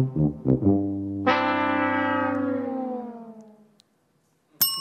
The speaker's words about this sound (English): Is that The Price is Right? Sure is. Yeah. They have a whole orchestra, right? Live, every show? Yeah, like 10 horns.